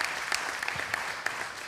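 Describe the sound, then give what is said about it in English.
A crowd claps steadily in a round of applause for the online viewers, a dense patter of many hands with a few sharper individual claps standing out, sustained at an even, moderate loudness with no voices. “Just give a round of applause to our online viewers.”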